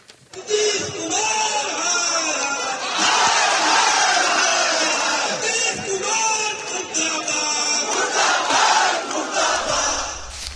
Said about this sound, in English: The meeting was in the morning, and by lunchtime, Nitish Kumar had already informed the governor, and by evening, the BJP was calling him names and their workers shouting slogans against him.